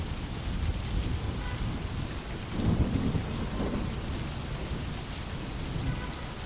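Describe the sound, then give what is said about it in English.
Steady rain pours down outside a shop awning, a dense hiss of drops striking surfaces while people scurry out of it, with a low rumbling swell of thunder rolling through midway. No voices are heard. “So here we are, with our eyes wide open, and watching people scurrying out of the rain, as if the water will do something other than just make them wet.”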